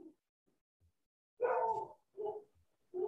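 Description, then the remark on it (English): Dogs make noise at 9 o'clock at night in three vocal bursts, a long, whiny, howl-like cry followed by two shorter ones, after a brief faint sound at the start. No one speaks. “So y'all hear this, my dogs do not want us to be great.”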